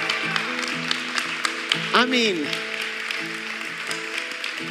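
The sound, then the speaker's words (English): An audience applauding with a steady, dense wash of clapping that runs throughout, while a man talks over it and his voice briefly rises in pitch. “I hate to ask you to clap, but because we applaud in our culture when things really good happen.”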